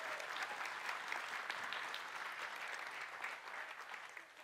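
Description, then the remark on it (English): An audience claps steadily in sustained applause welcoming a woman invited up to speak, a dense wash of many hands without pause before tapering slightly at the end. “you're going to welcome her, give her a big round of applause, a big clap.”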